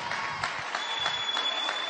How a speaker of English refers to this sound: Oh, let's clap our hands and show God we believe this.